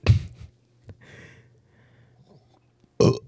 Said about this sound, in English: And, excuse me, let me take a sip.